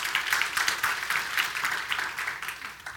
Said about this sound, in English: Yeah, give these men a round of applause and their families.